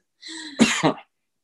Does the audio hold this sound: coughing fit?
yes